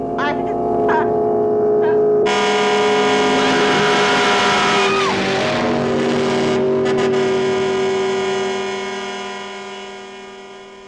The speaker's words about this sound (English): I think I hear the engine of that damn car. Wait, it sounds so weird.